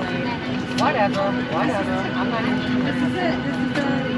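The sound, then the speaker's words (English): A steady, loud airplane cabin drone on a passenger's second flight of a trip fills the space with a constant low hum, while indistinct voices murmur faintly beneath the roar. “So I'm on my second flight now.”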